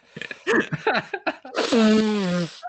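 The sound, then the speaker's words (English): Some brief muffled vocal sounds, then a loud, sustained nose blow lasting about a second, a honking, buzzy tone that slides slightly downward in pitch before cutting off. “Conveniently, I had to blow my nose, so there you are.”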